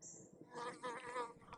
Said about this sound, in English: Ooh, a bee just tried to attack me.